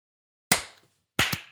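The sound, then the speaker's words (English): Sharp, crisp hand claps made for audio sync, with no talking: one loud clap, a pause of about half a second, then two quick claps in close succession, each ringing out briefly before fading. “How about 1, 2, 3? 1, 2, 3. Clap.”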